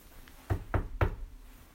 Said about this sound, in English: And at that moment, while the girls were talking and looking at the crystal, there was a knock on the castle door.